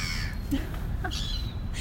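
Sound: crow cawing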